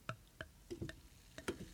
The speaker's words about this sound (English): Yeah, I can pour beer. I can't.